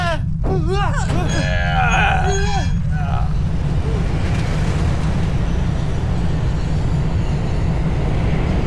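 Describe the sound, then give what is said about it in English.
Loud, steady rumbling of a minecart rolling fast along rails, with a continuous low clatter throughout; excited voices shout over it during the first few seconds before the rumble continues alone. “We gotta go! Quick! Everybody hop in the minecart!”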